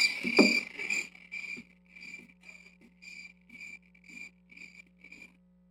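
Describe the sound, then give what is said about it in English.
Crickets chirp in a steady, evenly spaced rhythm, about ten short high trills over several seconds at moderate volume, with a faint constant low hum underneath and a louder burst at the start. “Nothing but crickets out there.”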